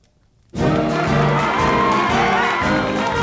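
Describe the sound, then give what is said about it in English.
After a brief silence, a crowd of thousands of supporters suddenly erupts into loud, sustained cheering and shouting at a presidential candidacy announcement in Richmond, Virginia, holding steady to the end. “The gift giver in chief has thrown his Santa hat into the presidential race, announcing his candidacy before thousands of cheering supporters in Richmond, the capital of the all-important swing state of Virginia.”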